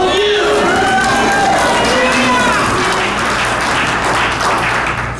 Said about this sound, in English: Now, y'all stop clapping or I'm going to get angry.